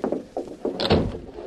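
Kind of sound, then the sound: household object, door being closed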